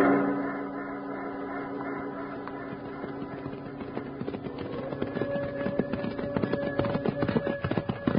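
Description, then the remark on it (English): Ridden horses gallop on a mountain with rapid, clattering hoofbeats that grow denser and louder partway through, over a steady humming tone, with no one speaking. “Let's grab our horses and light out after it.”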